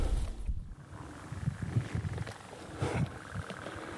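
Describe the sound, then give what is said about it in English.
Wind gusting across a marsh of ten-foot-tall grass, a low, buffeting rumble that swells and eases in uneven surges, with a faint airy hiss above it and no voices. “Oh, wind.”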